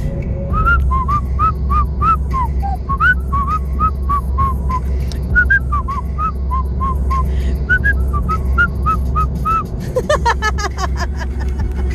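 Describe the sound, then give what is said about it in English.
A person whistles a quick, chirpy tune of short repeated notes, fairly loud, over a steady low engine-like rumble, ending in a wavering trill. “Now that I force you all to hear my whistling.”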